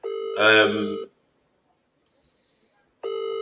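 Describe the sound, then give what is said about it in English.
An outgoing phone call's ringing tone as Dan Miller is being rung: a steady electronic purr sounds, falls silent for about two seconds, then starts again. It is clear, with no talking over it. “I'm ringing right now.”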